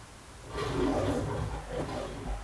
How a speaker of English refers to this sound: we're going to start it with The Lion Roar if you guys want to watch with us.